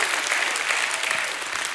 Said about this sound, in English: Go ahead, somebody, give him a hand clap and a shout of praise.